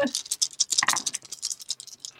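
Dice are rolled for an awareness check in a tabletop game: a quick clatter of dice tumbling and rattling across a hard surface, a rapid series of sharp, bright clicks that gradually thin out over about two seconds, heard alone without talking.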